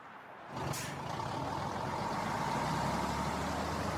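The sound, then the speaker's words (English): A tractor-trailer truck's diesel engine rumbles, with a sharp hiss of air brakes near the start, then a steady, loud diesel drone continues with no one talking. “I love driving my tractor trailer, and just like you, I just want to make it to my destination safely.”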